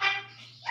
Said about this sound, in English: What the hell is that on the back? Did your wife just scream? She sneezed. Bless you.